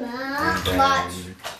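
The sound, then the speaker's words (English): Water sloshes and splashes softly in a bathtub filled with green water, with a child's voice talking over it through most of the moment and a brief splash near the end. “And then, so now we're taking a bath in green water.”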